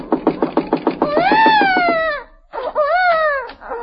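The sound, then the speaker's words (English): A baby left alone in a house cries loudly in two drawn-out, high wailing bursts, preceded by a quick series of short rhythmic pulses. The wails rise and fall in pitch, and no one speaks. “Leaving a baby in a house alone.”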